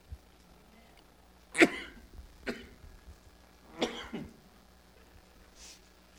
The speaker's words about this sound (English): Get some water, baby. Some water, please. I finally took a cough drop for a cough.